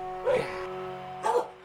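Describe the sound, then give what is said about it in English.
Mahler, the dog of the KUCI 88.9 FM radio show in Irvine, California, barks twice, about a second apart, each bark short and fairly loud against a steady low hum, with no talking. “And as always, a very stable genius, Mahler the fake news dog.”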